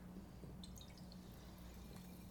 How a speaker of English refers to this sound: That was the sparkling water. I think you could hear it.